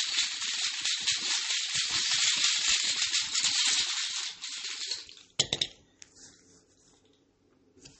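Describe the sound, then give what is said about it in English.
A small die clatters across a tabletop: a quick cluster of sharp, bright knocks and a final tap after several seconds of steady hissing rustle, with no one talking. “Sorry, that rolled across the table. That's why I paused.”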